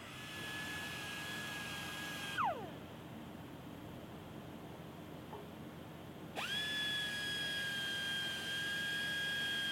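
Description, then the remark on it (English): A loud drill rig hammer, fitted with a new bit, runs steadily in a new hole with a high whine over a broad mechanical roar; the whine winds down for a few seconds, then spins back up and holds to the end. “And here goes the new bit back on the hammer to be ran in a new hole.”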